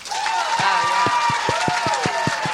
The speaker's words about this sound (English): Crystal, I mean, do you guys, by round of applause, I'm just going to make a statement, clap if you agree. Crystal is worse and more annoying than Corinne.